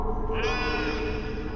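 A deer lets out one drawn-out, nasal wailing call that swings upward in pitch and holds for about half a second before fading, over a steady low rumble with no voices.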